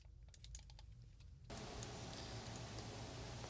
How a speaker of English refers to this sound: I was sipping on my coffee, so you probably heard the ice cubes.